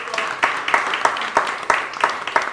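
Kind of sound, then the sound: crowd, audience applause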